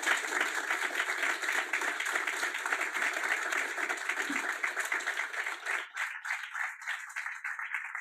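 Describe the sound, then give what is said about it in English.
An audience in a room gives a speaker a sustained round of applause, many hands clapping in a dense, steady patter that holds for several seconds before thinning slightly toward the end. “If we can please give a round of applause.”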